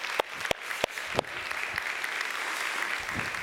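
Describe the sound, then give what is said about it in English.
Audience applause for the fathers standing up in the room: a few sharp, separate claps ring out at first, then blend into a steady, dense wash of clapping that holds at an even, moderate loudness. No one speaks. “We would love to cheer for you.”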